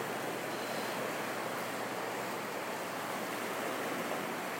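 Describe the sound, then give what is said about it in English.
A river rushes steadily, a dense, continuous wash of moving water that stays even throughout, with no voices over it. “Rushing, bubbling, gurgling.”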